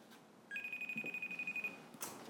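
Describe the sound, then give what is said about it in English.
A phone ringtone on a FaceTime video call: a steady, high electronic tone warbling in rapid pulses for about a second, then cutting off, followed by a brief burst of noise. No one speaks. “Phone still ringing?”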